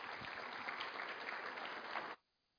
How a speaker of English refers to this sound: And let's give this group just a round of applause for sharing with us this morning.